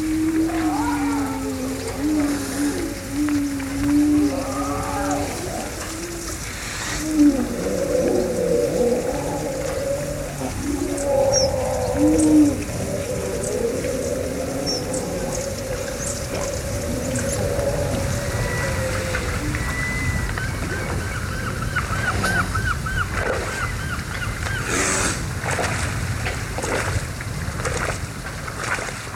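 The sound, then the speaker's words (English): Grey seals call with long, eerie, wavering moans and howls, several overlapping near the start, then fainter drawn-out cries, all over a steady hiss of wind, surf or rain. “has been spending quite a bit of time studying grey seals.”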